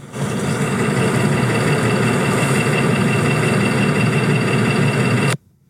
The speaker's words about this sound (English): It's called What Sound Is Damaging My Car This Week? Listen up.